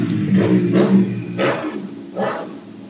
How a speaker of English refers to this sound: What on earth was that? Motorbike, by the sounds of it.